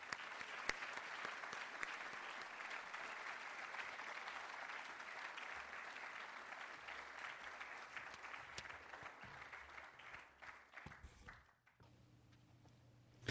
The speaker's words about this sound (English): But for now, I will ask you to welcome Olivier Blanchard with a warm round of applause.